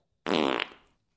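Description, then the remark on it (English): A single loud, buzzy fart erupts abruptly, sputtering with a rapid flutter for about a second before trailing off. It stands alone with no talking over it. “You want to crank one, Sourdough? Yeah. Okay. Just so you're clear, we're talking about someone selling a fart.”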